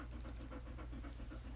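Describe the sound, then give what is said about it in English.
A small female puppy pants steadily in quick, rhythmic breaths, with a low hum underneath and a brief louder sound at the very end. “I'm sure you can hear her panting.”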